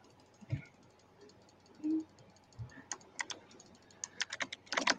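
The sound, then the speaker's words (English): Rapid keyboard clicking, a flurry of sharp key taps that starts sparse and speeds into dense bursts, with a couple of soft thumps and brief murmurs underneath. “Hey, who's clicking there?”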